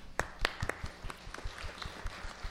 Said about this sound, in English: And look at all those people. Give them applause.